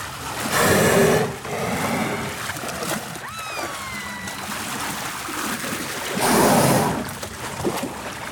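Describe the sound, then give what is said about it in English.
A killer whale at a marine park in the San Diego area exhales forcefully through its blowhole twice, each a loud, spraying whoosh of air and water several seconds apart, with lapping water and faint whistles in between. “I think we went down to Marineland or one of those marine parks down in San Diego area, and we got these great sounds of them, you know, blowing air and water forcefully through the tops of their heads.”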